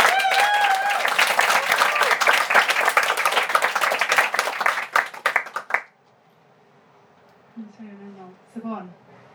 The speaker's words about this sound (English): So I think we should just have a round of applause.